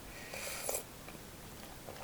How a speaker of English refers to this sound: Start with a little bit of ASMR. I've currently got a cup of tea right here, so are you ready? Let's have a sip.